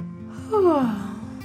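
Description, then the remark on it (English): A voice imitates the yawn of the story character Oceana: a single brief, drawn-out vocal sound that slides downward in pitch, fairly loud, over soft steady background music. “But Oceana's laugh turned into a yawn.”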